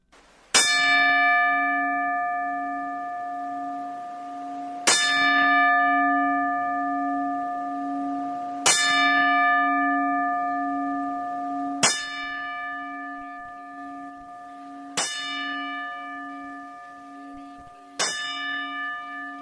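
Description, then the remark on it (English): A single bell tolls slowly, struck six times at steady intervals of about three to four seconds, each clear, ringing strike sustaining and overlapping the next. No voices. It is a ten-bell salute for wrestling promoter and wrestler Jerry Jarrett and Lanny Poffo. “I thought we'd take a pause for the family and friends of Jerry Jarrett, the promoter and wrestler, and Lanny Poffo, who both have passed away within the last 2 weeks, and will present the 10 bells.”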